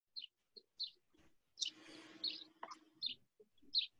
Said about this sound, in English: What sort of birds you got there